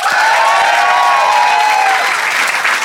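A debate audience bursts into steady, dense applause to back one side's arguments, hands clapping loudly and continuously throughout, with a few faint cheers and whoops mixed into the sustained roar of clapping.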